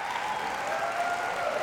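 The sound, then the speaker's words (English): A church audience applauds steadily for couples being added to its team, a dense, even wash of clapping that holds at a constant loudness throughout without rising or fading. “So let's give them another massive round of applause.”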